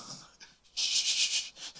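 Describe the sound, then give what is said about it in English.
A voice imitates a woman's loud night-time snore: a brief, hissy, wheezing breath, followed by a longer loud rasping exhale, with no talking. “She can probably hear me, but she likes to snore. And she likes to snore really loud.”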